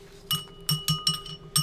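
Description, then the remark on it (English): Champagne glasses clink together in a toast about five times in quick, uneven succession, each tap bright and ringing briefly, fairly loud with no one talking. “Here is your glass of champagne, Commander Flossie.”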